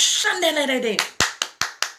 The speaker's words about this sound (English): Take a few minutes and clap, give God the glory.